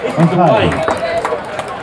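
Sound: audience applause and cheering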